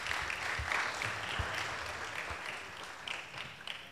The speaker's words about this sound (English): Thank you very much. Round of applause for them, guys.